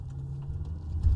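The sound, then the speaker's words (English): Steady low rumble of a car driving, heard from inside the cabin, continuous throughout, with a slightly louder bump of low-end noise right at the end. No one speaks. “I need the volume on the microphone actually down so you're not hearing all the car sounds.”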